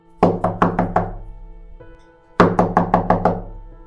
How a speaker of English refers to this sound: the night before Halloween on October 30th, there was a knock on Ramon's door